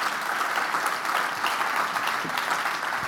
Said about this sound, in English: How many want to be blessed by the hand of Almighty God? Would you clap your hands and praise Him?